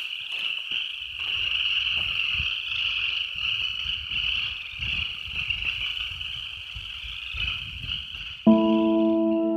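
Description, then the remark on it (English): A loud, continuous chorus of cicadas chirring outdoors at night, a steady high buzzing drone over faint low rumbles, with a brief harmonic tone cutting in near the end. “Oh wow, cicadas are really loud out here. You can hear them.”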